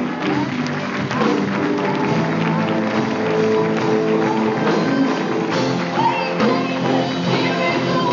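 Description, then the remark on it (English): A church audience cheers and shouts loudly and continuously, with applause and overlapping voices forming a dense, sustained roar for several seconds. “Church, let it out.”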